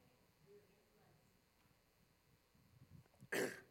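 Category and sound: human body sound, coughing and throat clearing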